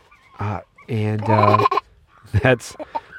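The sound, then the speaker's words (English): Backyard chickens call out loudly in several harsh, overlapping bursts, with one long raucous cry in the middle and shorter squawks following. “Okay, you guys, you gotta be quiet.”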